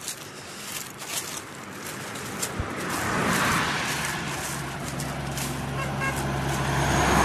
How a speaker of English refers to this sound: All right, got a honk. That is awesome. It's little things like that that make my day, make these walking days.